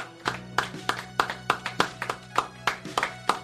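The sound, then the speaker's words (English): Steady, rhythmic hand clapping, with about a dozen sharp claps in quick succession keeping an even beat against a faint background hum. “You guys stop clapping?”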